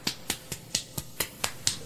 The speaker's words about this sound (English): It's a closed fist with me slapping my hand on the top of it. So you don't want to actually give him a round of applause? No. It's like a half one. No, it's a half.